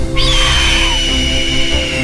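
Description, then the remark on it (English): A shrill pteranodon screech rings out once as it soars around the trees, a loud high cry that slides downward in pitch and trails off after about a second over a steady low rumble. “The massive winged dinosaur screeched again as it soared around the trees, its flapping wings pounding through the air with a deep whoomp, whoomp, whoomp.”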